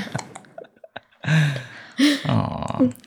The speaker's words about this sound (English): mother of two precious little girls, one of whom is right here, and has the cutest little hiccups ever.